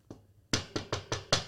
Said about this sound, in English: About 10 minutes after I put the music on, there was a very loud knocking at my door.